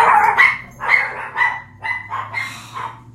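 A dog in Idaho barks frantically after someone drove by in a giant truck, a rapid run of about seven sharp, high-pitched barks, loud, over a faint low rumble in the background.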